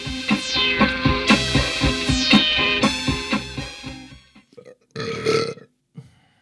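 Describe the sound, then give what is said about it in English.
Bright, rhythmic music plays for a few seconds and fades out, followed by a short grunt and then a single loud, drawn-out burp. “I keep burping on the intro of these things.”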